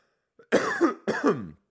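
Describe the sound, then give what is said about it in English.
Two forceful throat-clearing coughs in quick succession from a person with a chest cold, raspy and fairly loud, with a brief pause between them and no talking. “I have a little bit of a cough, a chest cold, and I don't have COVID.”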